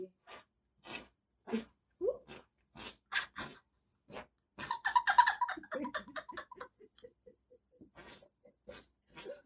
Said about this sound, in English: I tried to go for a world record, but they said that armpit farts are immeasurable.